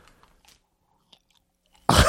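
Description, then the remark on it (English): Chewing while a person eats what amounts to a molded piece of garbage: faint, soft mouth noises and a small click, then a sudden loud, crunchy bite right at the end. No one speaks. “God, our whole conversation last week was about how the noise, chewing noise, is the worst.”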